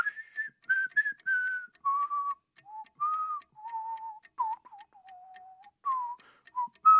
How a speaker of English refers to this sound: I'm going to allow you to whistle this time. Your time starts now.